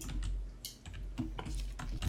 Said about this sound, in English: I hear Big Ed typing.